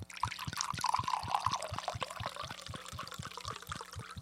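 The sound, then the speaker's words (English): Wine glugs and trickles steadily into a glass, a continuous live pour with bubbly gurgling and rising pitch as it fills, with no talking, in South Philadelphia on a Monday. “This is an actual live wine pour.”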